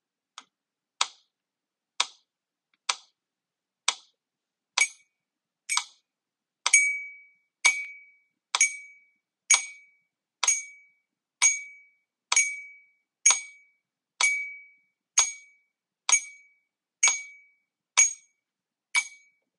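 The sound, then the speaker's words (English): A metronome ticks steadily in even quarter-note beats, about one click per second, each a sharp, bright tick. Partway through the clicks gain a ringing tone. No one speaks. “So I'm going to play the metronome again and see if you can clap or tap exactly the same.”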